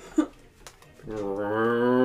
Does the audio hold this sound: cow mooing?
yes